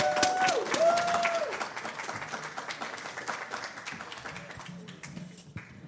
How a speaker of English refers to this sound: Give us a round of applause, please.